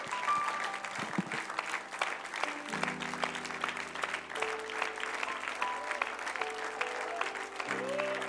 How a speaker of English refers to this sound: Oh, now let's give the Lord a hand clap in this place.